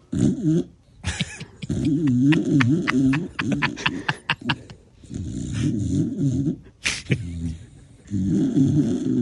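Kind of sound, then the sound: animal, dog snoring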